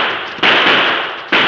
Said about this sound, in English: But as he moved, he tripped over a tree root and accidentally discharged the gun in his hand. The outlaws turned, guns blazing.